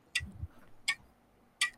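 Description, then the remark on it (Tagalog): A clock ticks three times at an even, unhurried pace, each tick a crisp, bright click standing out against a quiet background with a faint low thump near the start. “So, the correct answer is clock.”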